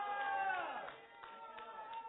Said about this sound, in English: Okay. I should be hearing cheering right now. Hallelujah!